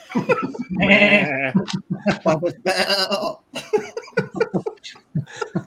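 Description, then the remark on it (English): A person imitates a goat with two drawn-out, quavering bleats, loud, followed by quick chatter and brief laughter. “Every time you say meh, you sound like a goat.”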